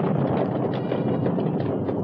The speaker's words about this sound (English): A pale sun broke through the clouds for a moment, but at that same moment, lightning ripped the sky to the west and thunder crashed.